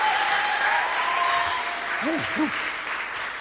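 An audience applauds steadily throughout, a dense, even wash of clapping at constant loudness, with a brief voice rising and falling over it partway through.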